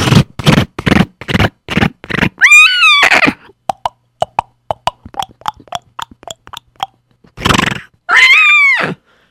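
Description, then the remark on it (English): A horse whinnies twice, the calls sliding down in pitch, between rapid thudding hoofbeats and a stretch of light, evenly spaced clip-clops that fade as it gallops off. No one speaks. “And sure enough, Sender would go on his horse and gallop off.”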